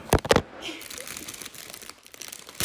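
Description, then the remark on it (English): Two sharp, loud crinkling bursts of a plastic chocolate wrapper being torn open with teeth, followed by softer, continuous rustling and crackling of the packaging. “Okay, I'm gonna try with my teeth.”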